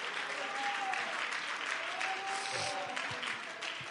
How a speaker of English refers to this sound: In the name of Jesus Christ, everybody clap your hands as you are being seated tonight.